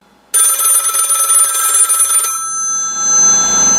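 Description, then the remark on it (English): A loud telephone bell rings once in a rapid metallic trill for about two seconds, then cuts off and its tone fades away. No one speaks. “Here is a bonus phone call that we could not play out on the radio”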